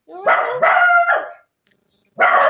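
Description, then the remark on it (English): A dog in the next room barks loudly in a quick run of two or three drawn-out, yelping barks, pauses briefly, then lets out another bark. No one speaks. “I've been built in the next room and I think the dog keeps forgetting.”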